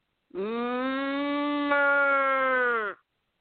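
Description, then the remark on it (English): A person imitates a cow's moo: one long, steady, low-pitched voiced tone lasting about two and a half seconds, held at an even loudness before cutting off. “And then I do a cow.”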